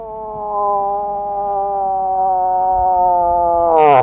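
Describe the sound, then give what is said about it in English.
A long, steady wailing moan, a wildlife photographer's imitation of a cow moose's mating call from the September and October mating season, holds one siren-like pitch for nearly four seconds, then drops off abruptly with a breathy burst at the end. It's loud, with no talking. “There's the siren call of the cow”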